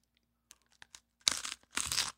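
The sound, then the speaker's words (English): Someone takes a crunchy bite of raw onion: a few faint clicks, then two loud, crisp, crackling crunches in quick succession, with no talking. “Dude, that's a bite.”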